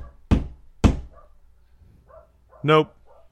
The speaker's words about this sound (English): Are you listening to the dog bark? Yeah, he's taking my attention.